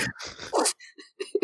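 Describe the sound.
A person mimics a dog delivering the newspaper, as an impression of the character Chibi carrying an envelope: a few breathy, muffled grunts followed by short, high whiny whimpers and yips, all within about a second and a half.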